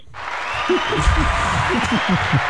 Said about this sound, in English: Hey, you know, give yourselves a hand of applause. A round of applause, not a hand.